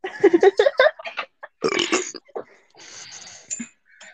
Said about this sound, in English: The amount of burping that is in this podcast is hilarious.